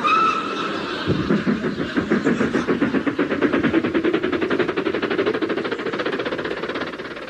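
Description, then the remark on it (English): A steam locomotive chuffs steadily and loudly, its rapid rhythmic beats gradually quickening, with a brief high whistle-like tone at the very start and a continuous hiss of steam throughout. “Gad, the wonders of the steam age!”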